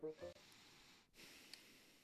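Heavy breathing right up against a microphone: loud, airy huffs with a snorting edge, two long breaths separated by a brief pause.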